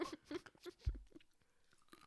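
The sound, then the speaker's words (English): Wet chewing and crunching on hard toffee candy with the molars, with irregular bites and a heavy thud of a jaw clamp midway, then quieter grinding trailing off. “Oh, even on the second chew and with my molars, it's hard.”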